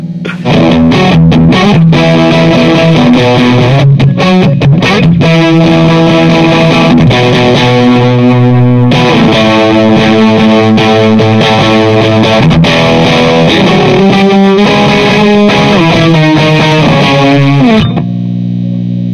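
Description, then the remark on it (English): A loud electric guitar plugged straight into an amp turned all the way up, switched to its high-gain setting with no pedals, plays growling, heavily distorted chords and short riffs for about eighteen seconds, with no talking, then cuts off abruptly. “Let me actually turn the high gain on.”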